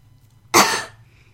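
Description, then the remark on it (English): A single sharp cough bursts out close to the microphone, loud and breathy, fading within half a second, with quiet background before and after and no talking. “Trying your best not to cough and splutter all over the microphone?”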